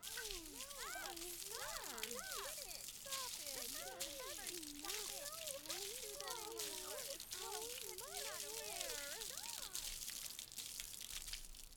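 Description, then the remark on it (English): A steady hissing spray of water splashes loudly throughout, hitting four nymphs, while high squeaky voices chatter and squeal over it. “The four nymphs are immediately hit by a spray of water.”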